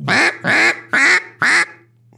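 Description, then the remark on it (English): A duck call blown with light pressure gives four evenly spaced, raspy quacks, each about a quarter second long, clear with no talking. “I'm barely putting any pressure on that call”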